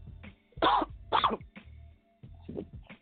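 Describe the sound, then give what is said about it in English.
A raspy-voiced morning radio host clears their throat: two harsh, rasping bursts in quick succession, followed by lower, gravelly grunts and a final softer hack. No speech. “I'm trying to clear my throat.”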